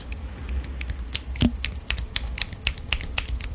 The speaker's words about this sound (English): There you go. Yeah. Finger snaps.